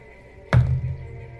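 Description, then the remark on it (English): A die is rolled onto a tabletop during a game and lands on 14, with one dull, low thunk and a brief rattling tail as it settles, heard alone with no voices. “What kind of dice are you giving me?”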